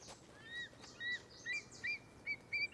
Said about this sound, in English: Wow, this sounds very stereo. It sounds like birds flying behind me over here.